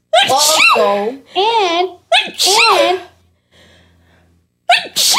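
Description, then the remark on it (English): Several loud sneezes burst out one after another, each with a strong voiced cry, followed by a brief quiet breathy pause and the start of another sneeze. “Gesundheit.”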